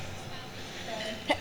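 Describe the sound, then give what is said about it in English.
A single quick, sharp sneeze bursts out near the end, brief, after a stretch of low, murmuring background noise. “Bless you.”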